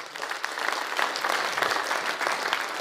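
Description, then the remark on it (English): A church audience claps steadily for a few seconds in praise of people coming to faith and being baptized, a dense, even patter of many hands at a moderate, sustained level with no voices standing out. “Come on, let's give some praise, some round of applause for that one.”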